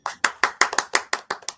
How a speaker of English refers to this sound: By the way, on your soundboard, do you have the F1 button, which is the audience chair? The applause. There we go.